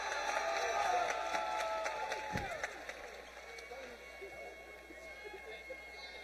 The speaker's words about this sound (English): Nice round of applause there.